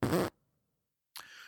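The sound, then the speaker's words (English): A loud, buzzy mouth-made fart sound blurts out briefly, then silence, followed by a second raspier, quieter sputter near the end. A voice imitates the noise with the lips. “Yeah, I like mouth fart noises.”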